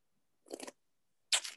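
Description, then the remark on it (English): Two short, wet slurping sounds as wine is drawn in over the tongue during a tasting, separated by a brief pause, with no talking. “Listen to my slurps.”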